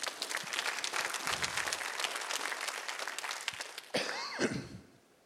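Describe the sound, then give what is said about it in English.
A church audience claps during a sermon in a dense, steady burst of applause for about four seconds, then a loud voice calls out over the thinning claps before everything fades. “Somebody needs to clap on that one.”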